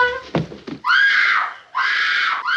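A high-pitched scream from an 11-year-old girl rings out loud as she runs into a room and finds her mother standing over her father's murdered body. It breaks off briefly and returns as a second sustained shriek of horror, following a few seconds of muffled sounds.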